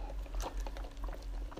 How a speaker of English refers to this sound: So, on that note, bitch, gonna take another fucking sip.